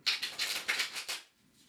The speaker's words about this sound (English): One of our tarot students has this like really fancy method of shuffling like above his head. Oh my God, I'm doing it right now. Wow. He told me I could do it if I just kept my fingers steady and believed in myself.